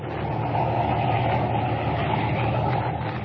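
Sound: car engine idling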